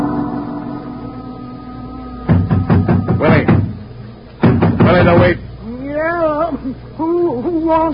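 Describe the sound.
Two loud bursts of rapid knocking on a wooden shanty door on the waterfront, several sharp raps each with a short pause between, followed by a man's voice speaking.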